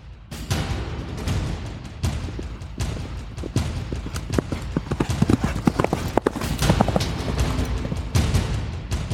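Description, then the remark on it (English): Rapid, pounding hoofbeats of a horse galloping hard at its top speed, a dense driving rhythm of heavy thuds that stays loud throughout, with no talking. “their horse, sensing the presence of the Erl-König, sped up on its own, galloping at its top speed to escape”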